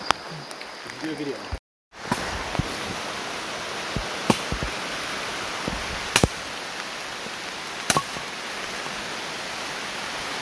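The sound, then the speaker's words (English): Firewood being chopped very quickly with a machete at night in the rain, while a shelter is built: a handful of sharp, crisp strikes land every couple of seconds over a steady, rain-like hiss, with a brief gap of near silence near the start. “That is the sound of firewood being cut very, very quickly before it gets wet.”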